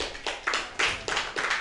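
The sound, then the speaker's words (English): Audience clapping for comedians at a comedy show, in broad, noisy bursts that swell and fade in a loose, uneven rhythm, bright and crackling, with no voices over it. “After you finish clapping for Dean Hotley, start clapping again for Victor Trevino.”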